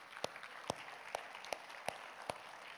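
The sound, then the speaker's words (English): Audience applause for people who have taught Sunday school, led a life group, sung in a choir or been on stage, faint, with a steady wash of clapping and a few sharper claps landing in an even rhythm about every half second. No voices or clear cheering stand out. “Can we clap and cheer for them for just a second?”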